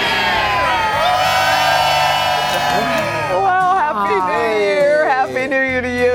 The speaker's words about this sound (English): Welcome back. It's a Monday morning, very first day of 2024. Lively crowd, guys.